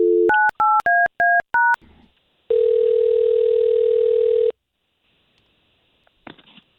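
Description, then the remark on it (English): A quick run of touch-tone beeps as a phone number is dialed to get a woman on the line for a radio show, followed by a long steady ringback tone, then a faint click as the line connects. “We're just going to get her on the line with the phone number that you gave us, and let's see if we can't get you guys talking, all right?”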